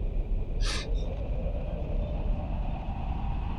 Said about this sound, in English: An aeroplane.